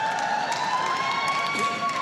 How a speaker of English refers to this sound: Trust me, the people that applauded, yes, if you live with her, it's even more amazing.